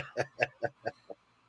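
A dog in the studio next door barks in a quick run of about five sharp yaps, evenly spaced and fading toward the end, heard faintly.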